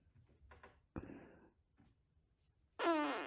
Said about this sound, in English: You can like anticipate them. How does she have so many farts? This is so strange. So much tension. She's squeezing. You can see she's squeezing.